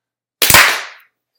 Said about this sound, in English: I'm going to cut that portion. Everybody clap.